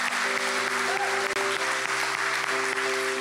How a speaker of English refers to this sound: Let's give the Lord a round of applause. Congratulations.